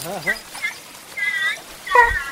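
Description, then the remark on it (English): A dog off the leash gives a string of excited, high-pitched joyful barks and yips in uneven bursts, some drawn out into short wavering whines, moderately loud with no talking. “And she's just kind of joy barking.”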